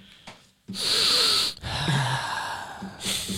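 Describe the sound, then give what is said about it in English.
A person imitates sniffing with loud nasal inhales: a long drawn sniff, then another sustained one, with a third starting at the end. No speech. “He's just been smelling it. Just sniffing it, dude.”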